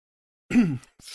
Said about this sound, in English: Halfway through a cough. Sorry.